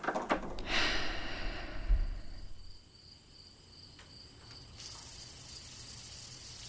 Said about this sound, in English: Time to have a wild wash under the outdoor forest shower.